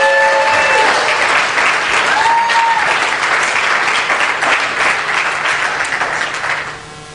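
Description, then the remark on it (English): A large audience claps loudly and steadily for several seconds for a student coming up to speak, a dense wash of applause that fades slightly toward the end, with a faint whistle or tone briefly audible early on. “Will you please clap as loud as you can”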